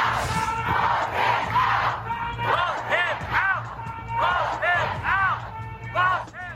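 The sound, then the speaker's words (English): A crowd shouting together at a protest in Houston, loud overlapping voices rising in repeated chanting bursts over a steady low rumble, with no single speaker standing out. “Righteous crowd protests in Houston as law enforcement admits to its catastrophic response.”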